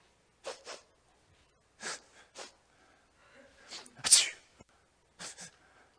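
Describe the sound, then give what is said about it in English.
A voice imitates sniffling: several quick pairs of sharp, breathy sniffs, fairly loud, with short pauses between, and one longer, harder snuffle near the middle. “So what he does is he just brings a sniffle. He'll bring a sniffle in.”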